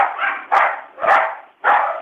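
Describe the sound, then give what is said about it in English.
Dogs that have just been put outside bark repeatedly, several sharp loud barks in a quick irregular rhythm, each with a broad midrange burst, with no talking. “We just put the dogs outside.”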